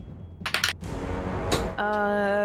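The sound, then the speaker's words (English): Dice clatter briefly across a tabletop in a quick burst of three or four sharp rattling clicks, followed by a hiss of background noise and then a steady tonal hum. “Ooh, wrong dice.”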